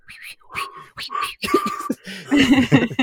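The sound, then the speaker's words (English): A person tries to whistle but only blows air: a series of breathy, airy puffs with faint tonal hints but no clear whistle note, growing louder and rougher toward the end. “He tries to whistle, but nothing comes out. He's just blowing.”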